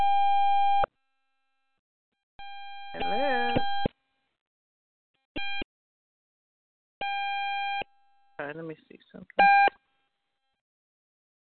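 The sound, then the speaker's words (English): A steady electronic phone-line beep sounds in repeated bursts of about a second during a phone call, separated by silence, with a voice talking between and over some of the tones. “Okay, we could not hear you anymore, and it sounds like some disruption maybe on your phone.”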